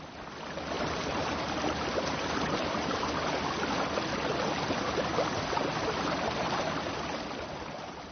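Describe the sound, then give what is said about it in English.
A swift river rushes steadily under a bridge, a dense, continuous wash of flowing water that stays fairly loud and even throughout, with no voices. “He wanted to shout, but the sounds he heard were just those of the river running swiftly under the bridge.”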